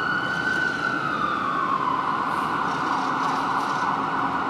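An ambulance siren wails steadily and loudly, its pitch sliding slowly, over a dense wash of city street and traffic noise at a street corner in Vancouver, with no one speaking.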